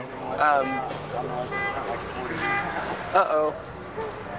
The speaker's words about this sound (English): Someone's honking. I think it was a car alarm, actually. Probably.